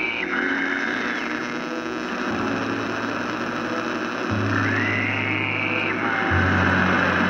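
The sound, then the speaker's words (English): A radio flares up: continuous radio static hisses with a low electrical hum that shifts pitch in steps, while warbling whistles sweep up and down through the noise. It stays loud, swelling slightly near the end. “your radio flares up again. So you hear it and the static starts going crazy.”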